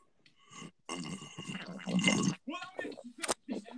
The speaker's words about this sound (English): It sounds like you're drinking through a straw and there's nothing left in the can. Yeah, there's nothing left in there, bro. That's empty.